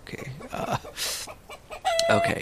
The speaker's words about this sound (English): So that's the wrong bird. That bird is just around on the ground.